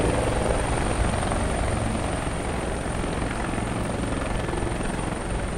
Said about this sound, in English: this helicopter that just landed on the roof of a Miracle-Ear building